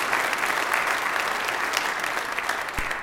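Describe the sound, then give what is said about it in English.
An audience gives a clap offering to the Lord after its worship team has led the worship, breaking into sustained applause, a dense, steady wash of many hands clapping at an even loudness for the whole stretch, with no voices standing out above it. “Well, we've already done it, but I think the Lord deserves a clap offering by what our worship team has led us to do today.”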